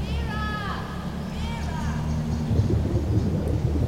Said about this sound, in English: I can hear water, but I don't feel wet.